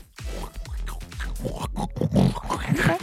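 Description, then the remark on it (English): A person mimics a pig with a run of rough, snorting grunts and oinks, loud and continuous for a few seconds with no other talk. “I need to do the sound effect for it. Being a pig.”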